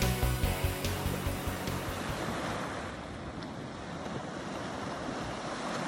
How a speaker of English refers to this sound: So, it is sunrise, and the waves are absolutely stunning. I'm earthing right now, just feeling the waves touch my skin and sending really good intentions to the world.